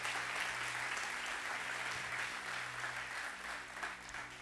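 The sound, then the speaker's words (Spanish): A church audience bursts into sustained applause for the Lord, a dense, steady wash of clapping that stays loud for the full few seconds, with a low hum running underneath. “Dale un fuerte aplauso al Señor si tú lo crees.”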